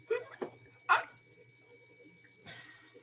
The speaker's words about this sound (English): Dog.